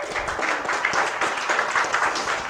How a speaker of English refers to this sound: And thank you for clapping for them, because they took time and energy, and they are literally sitting in front of you sharing their story, right?